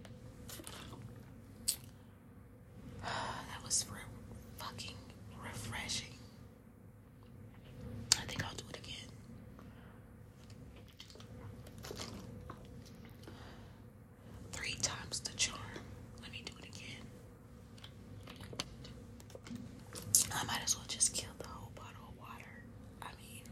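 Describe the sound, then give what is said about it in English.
A person drinks water: quiet, wet sipping and swallowing sounds with soft squishy mouth noises, recurring irregularly with breathy pauses and no talking. “So, I'm glad I drank that water.”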